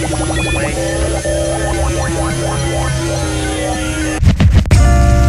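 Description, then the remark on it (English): A loud, steady electronic sine wave test tone at 90 dB drones on with a cluster of warbling, sweeping tones layered over it, then harsh bursts of static crackle in near the end. “give us 90 dBs and sine wave, please.”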